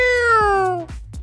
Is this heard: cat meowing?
yes